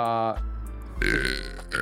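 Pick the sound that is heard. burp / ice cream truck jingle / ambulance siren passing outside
burp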